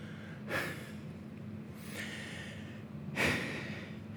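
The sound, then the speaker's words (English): Three short, breathy gasps from an audience, spaced a second or so apart, the last one loudest, over a steady low background hum; no one speaks. “There's a gasp in the audience because that is the lowest of the low, and you can't get any lower, man.”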